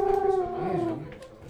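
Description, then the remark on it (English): A voice imitates a purring noise as a guest arrives: one sustained, buzzy hum that holds a steady pitch, then slides lower and fades over about a second and a half, with no talking. “I keep noticing you do a purring noise when another guest arrives.”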